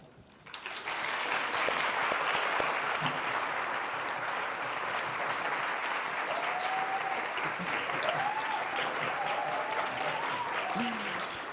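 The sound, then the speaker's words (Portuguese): Sustained audience applause at the close of an evening session on Kaposi sarcoma, a dense, steady wash of clapping that starts abruptly and holds loud for over ten seconds, with faint whoops or cheers rising briefly through it. “O aplauso para vocês também, né?”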